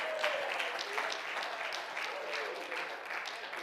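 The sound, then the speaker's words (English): An audience claps hands together to praise God during a church service, in a steady, even rhythm, the many claps merging into a dense, continuous wash of sound. Faint voices rise underneath. “Let's clap our hands and praise Him together.”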